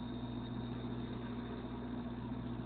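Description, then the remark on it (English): A steady, unbroken roar of road traffic of trucks, motorcycles, campers and cars, heard from a footbridge over the road, with a deep engine hum underneath, vehicles blending into one continuous drone rather than distinct pass-bys. No one speaks. “Crossing a footbridge over the road, I look down on the steady flow of trucks, motorcycles, campers, and cars.”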